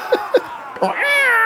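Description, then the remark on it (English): A cat meows: two short chirping mews, then a louder, drawn-out meow that holds steady to the end. No one speaks. “Cats are stupid.”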